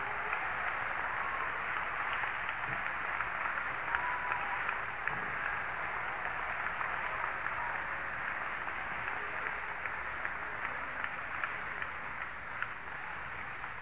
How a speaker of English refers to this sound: Somebody clap their hands to the Lord right now.